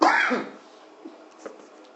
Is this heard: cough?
yes